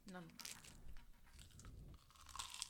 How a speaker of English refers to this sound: Can you stop chewing into the mic, please? Are these on? You're taking big chomps, too.